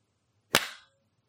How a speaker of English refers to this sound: Your editing skills, because one clap. Hell yeah. Perfect clap. That's all I need.